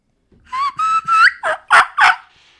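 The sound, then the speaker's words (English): A young turkey hen, a juvenile whose voice is breaking, gives three thin, rising whistled kee notes, then breaks into three louder, raspier yelps that crack high at the end, clear with no talking. “So a lot of times they'll kiki and then yelp.”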